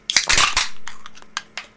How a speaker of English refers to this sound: He's over here crumpling a can.